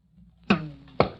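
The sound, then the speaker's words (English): An arrow is loosed from a wooden bow carved from willow and strung with strips of calf hide: a sharp snap with a short ringing twang, followed half a second later by a second hard knock, with no voices. “And now watch this. See here, this is the arrow.”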